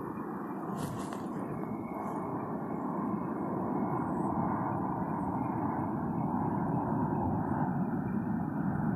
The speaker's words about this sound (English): See it? The planes are flying to me. Yeah, they're going tonight.